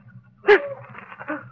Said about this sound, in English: Dogs. They got dogs after me. They're still after me. Them dogs are tracking me down.